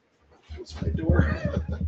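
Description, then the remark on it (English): A female shelter dog chomps a squeaky toy repeatedly, a quick run of shrill, wheezy squeaks growing louder and more insistent over a couple of seconds. “Yeah, that dog is loving the squeaky toy.”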